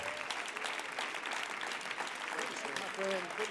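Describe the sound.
An audience applauds steadily in praise of the Lord as an evangelist comes to the pulpit, many hands clapping in a dense, sustained roar of claps, with a few voices calling out over it near the end.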